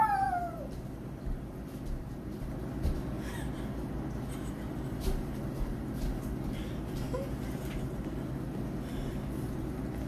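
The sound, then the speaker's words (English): A dog that has just come in gives a single short, high, falling whine right at the start, then falls quiet while a steady low rumble of background noise fills the rest. “I apologize for that. A dog came in.”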